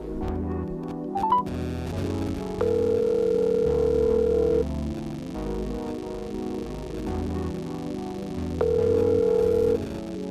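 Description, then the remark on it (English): Phone call tones sound over a steady music bed as a host dials a Nashville musician for a phone interview: two long, even beeps about six seconds apart, like a line ringing while the call connects. No one speaks. “So, give me a second while I dial his number.”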